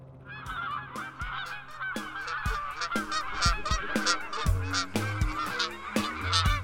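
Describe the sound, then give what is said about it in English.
A flock of geese flying overhead, heading south, honks continuously under a bright blue sky, dozens of overlapping nasal calls in a busy, uneven chorus that stays fairly loud throughout, with no voices. “The day dawned bright with a brilliant blue sky and a flock of geese alerting all below that they were heading south to bask in warmer climes.”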